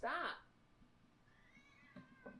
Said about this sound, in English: But, oh my God, this fucking cat.